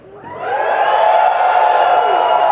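audience cheering

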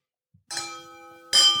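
glasses clinking

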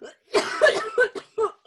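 cough

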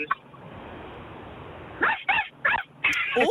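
small dog yapping

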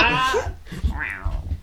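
kitten meowing

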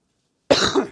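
cough

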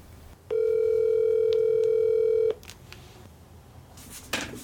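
telephone dial tone

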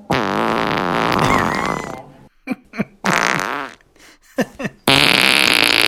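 fart

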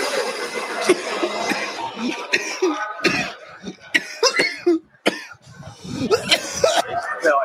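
coughing fit

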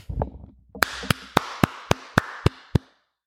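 hand clapping

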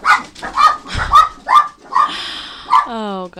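dogs barking

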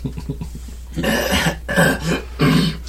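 deep hacking cough

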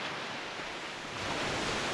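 ocean waves surf

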